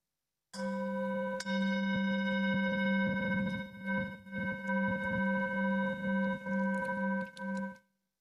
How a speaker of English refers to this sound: Each week, we ring this chime in solidarity with people around the world. As we listen to the chime, let us remember our connection to each other and the world around us.